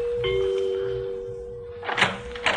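A house's front doorbell, rung after walking up a flagstone walk, rings with a single sustained, mid-pitched chime that holds steady for over a second. A couple of brief clattering door sounds follow.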